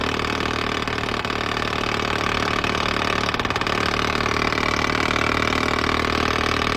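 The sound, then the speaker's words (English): A poppy two-stroke diesel engine, apparently a tractor engine and not a dirt bike, idles steadily with a throbbing low rumble, continuous with a slightly uneven, popping pulse and a brief rougher patch midway, with no one talking. “That's some kind of tractor engine. Some sort of like poppy two-stroke diesel or something?”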